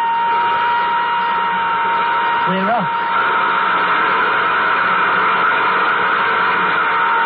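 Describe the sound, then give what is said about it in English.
A dense, steady roar of nuclear jet engines fills the whole stretch, with a constant high whine riding on top; a man speaks briefly over it partway through as nuclear jet number two is cut in. “Cut in nuclear jet number two.”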